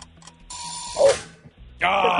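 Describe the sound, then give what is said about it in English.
A quiz game's timer goes off with a loud, harsh buzzing tone that starts abruptly near the end and holds steady, preceded by quieter mechanical whirring and tones. “Timer just went off.”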